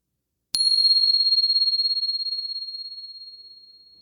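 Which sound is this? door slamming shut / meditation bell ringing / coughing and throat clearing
meditation bell ringing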